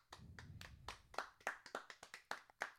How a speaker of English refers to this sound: Tepid round of applause. Tepid, from the unenthusiastic round of applause. The hundreds of audience members here in Cuck Nation Studios. None of them seem to care.